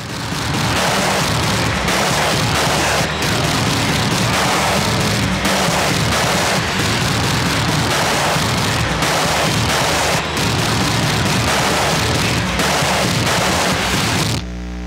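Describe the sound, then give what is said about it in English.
Heavily distorted, crunchy drums, including a snare, pound out a steady, driving beat, loud and saturated with harsh noise throughout, with no voices, before cutting off into a brief noisy tail at the end. “The crunchiest drums in history. Just distorting the hell out of it.”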